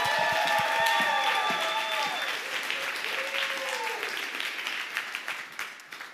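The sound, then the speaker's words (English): A crowd applauds steadily and loudly for about six seconds, with high whooping cheers over the clapping at first that fade as the applause continues and slowly thins out. “Y'all give it up for none other than Sarah Gaither.”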